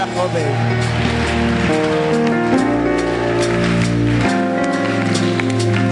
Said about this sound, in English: Oh, with a better clap and a shout of praise. Hallelujah.